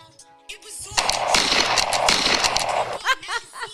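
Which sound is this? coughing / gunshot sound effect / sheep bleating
gunshot sound effect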